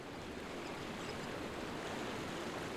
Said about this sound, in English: It felt strange having the calm sounds of the river and the unique silence that somehow seemed to flow down from the